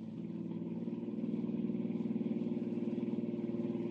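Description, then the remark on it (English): A car engine roars at speed as the car chases another car, its throaty drone swelling louder over the first second and then holding a steady, pulsing throb, with no voices. “I'm going to catch that car.”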